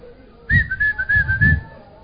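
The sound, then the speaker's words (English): A single sustained note blown on a whistle, lasting about a second, fairly steady with a slight waver in pitch, moderately loud, with soft low thumps underneath. “Then you blow your whistle.”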